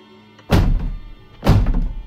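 Two heavy, forceful knocks on a front door outlined by individual glass frames that rattle from the force of the blows, about a second apart, each a loud booming thud with a rattly edge that fades slowly. No voices.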